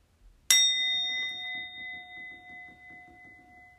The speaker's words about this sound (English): We're just going to sit, be present, notice what comes up in our minds, and that's it for 1 minute. Okay? And then at the end of the 1 minute, I will ring the bell again.